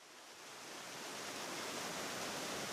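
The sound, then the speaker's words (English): Steady, continuous rush of the River Barrow flowing by a weir, heard from its banks in County Carlow, Ireland, a dense hiss-like wash that swells slightly at the start and then holds even, with no voices. “I'm on the banks of the River Barrow here in County Carlow.”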